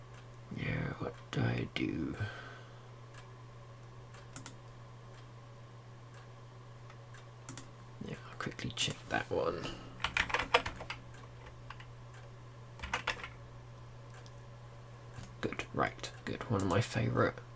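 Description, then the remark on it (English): Typing on a computer keyboard while reopening a website, in short bursts of rapid clicks separated by quiet pauses, over a steady low electrical hum. “here typing it's me reopening Trekcore”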